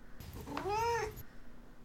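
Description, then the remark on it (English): A single clear meow from the cat Duarte, moderately loud, rising then falling in pitch over about half a second, with a faint background hum and no talking. “Now it's time for Duarte's Corner, where, of course, my cat Duarte will give his thoughts and opinions on this book.”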